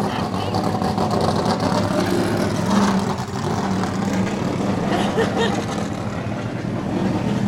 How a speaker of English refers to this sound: We'll wait for this NASCAR to go past. NASCAR is always noisy.